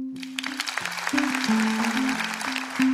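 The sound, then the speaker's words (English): An audience claps steadily for a few seconds to vote that a news story is real, many overlapping hand claps forming a dense patter, with a low sustained tone shifting pitch underneath. “Clap your hands if you think this is real.”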